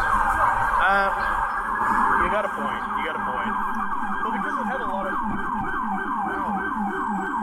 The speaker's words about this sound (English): You know, they were really trying with some of those sirens.